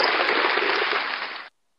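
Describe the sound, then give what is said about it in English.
A brief burst of dense applause, a steady hiss-like wash of clapping that holds for about a second and a half before cutting off abruptly, almost resembling static. “Is that applause? Applause. Oh, it sounded like static.”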